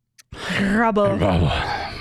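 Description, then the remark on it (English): A single sharp sneeze bursts out after a faint intake of breath, a loud voiced, noisy blast that trails off over about a second and a half. “Bless you.”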